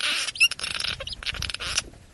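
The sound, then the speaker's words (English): A busy chorus of high, thin chirps and peeps from baby birds in a nest, overlapping in quick bursts with a few sharper cheeps, steady and moderately loud with no talking, recorded in stereo with several small recorders ('lobs') placed inside the nest. “There's some baby it's birds. Like, it's neat the stereo effect on it, too.”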